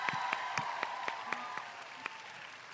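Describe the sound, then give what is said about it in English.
An audience applauds steadily for a backstage team before the night's show starts, a dense patter of many hands with a few sharper individual claps popping out above the wash, sustained evenly without voices. “Can we give them a round of applause before the night starts?”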